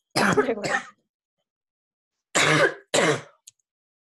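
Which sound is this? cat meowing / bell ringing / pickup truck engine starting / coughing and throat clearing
coughing and throat clearing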